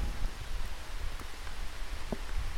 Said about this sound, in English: Bring the rain on. We're ready for it because the excitement and the fire is going to put it all out.